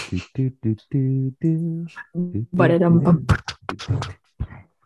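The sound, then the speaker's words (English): Voices hum a light, bland tune in the manner of elevator music in short sustained notes, then trail off into looser, scattered vocal sounds. “Oh, we were doing elevator music in your absence.”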